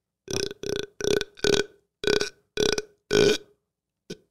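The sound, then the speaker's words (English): A long, creaky burp breaks into seven stuttering, evenly spaced pulses with a raspy, door-hinge groan, followed by a brief faint blip. No one speaks over it. “Dude, that sounded like an attic door creaking open.”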